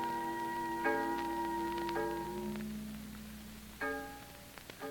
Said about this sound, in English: Listen to the fog bell